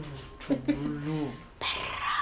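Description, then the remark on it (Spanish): A single brief, low growl lasting about a second, likely a person imitating a dog, followed by a rush of breathy noise. “Perro.”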